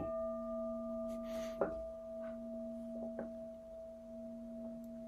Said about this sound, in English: Which I think probably deserves a bell.